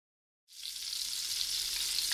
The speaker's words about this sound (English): That, my friend, is the unmistakable sound of sizzling bacon.